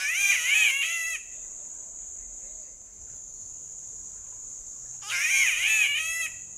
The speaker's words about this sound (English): Like its neighbor, the spotted catbird, that's nearly a foot long and emerald green with white spots.